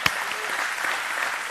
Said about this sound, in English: If you believe that, church, give God another praise clap.